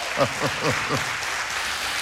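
An audience gives light, polite applause, a steady wash of soft clapping that continues throughout, with a voice speaking briefly over it at the start.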